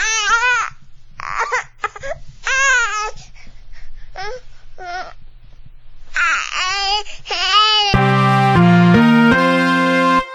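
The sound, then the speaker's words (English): A crying-babies sound effect: repeated high, wavering infant wails in loud bursts with short gaps, overlapping into a chorus, then cut off by a brief, brassy musical sting. “Bunch of negative Nancys and crybabies, if y'all ask me. Get over it! Double D, cue the sound effects.”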